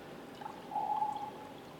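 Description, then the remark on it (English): A short pour of coffee into a cup, a steady thin trickle that rises slightly in pitch as it fills, with no voices present. “I've got enough there for my cup, so I'm gonna go with that.”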